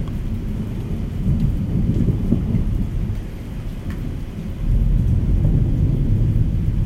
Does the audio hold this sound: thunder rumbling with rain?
yes